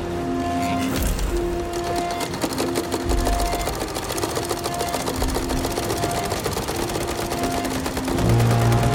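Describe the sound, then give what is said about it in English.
A sewing machine runs steadily in a film sequence showing an assembly line for uniforms, its rapid, dense mechanical rattle filling the whole stretch loudly, with sustained musical tones weaving underneath and a brief low swell near the end. “The key moment of that sequence probably is when we see the sewing machine, and then the sound of the sewing machine kind of morphs into the sound of a machine gun.”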